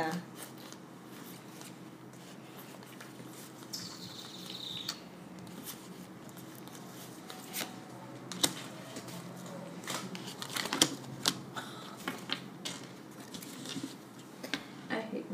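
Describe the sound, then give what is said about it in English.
A stack of game cards being shuffled, with irregular bursts of papery riffling and clicking over a low background murmur of voices. “Yeah, that you can shuffle those up and read them to the world.”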